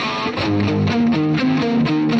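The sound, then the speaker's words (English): A heavily distorted electric guitar plays a loud, chugging riff with sustained, gritty chords shifting in a steady rhythm, dense with no voices. “Plus, too much distortion”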